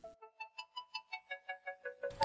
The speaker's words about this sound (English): Ding! Goes the timer. Finally, they're here. Delicious homemade bagels topped with butter, jam, or schmear.